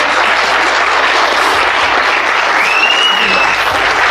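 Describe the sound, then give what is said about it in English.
A large audience applauds a panel steadily, a dense, loud wash of clapping that fills the whole stretch, with a brief whistle-like tone rising above it partway through. “Give them a big round of applause.”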